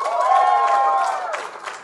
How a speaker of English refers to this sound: Anyway, now just by round of applause, who has heard or seen the podcast before?